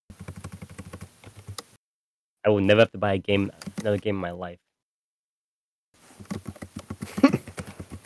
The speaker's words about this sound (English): you're typing a lot there. Can you hear that,